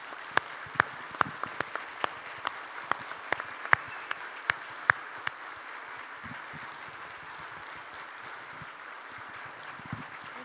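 A crowd applauds with steady, dense clapping from many hands, with a few sharp, louder claps standing out early on before the applause gradually thins and fades.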